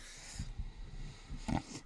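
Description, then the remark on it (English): A person snorts and clears their throat and nose, making a series of low, rough, pig-like grunts with a louder nasal snort near the end. No one speaks. “So occasionally I will be clearing my throat and nose.”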